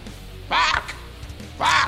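Two loud, harsh, raspy bird squawks, used as a band's vocals, ring out about a second apart, with a low rumbling background between them and no talking.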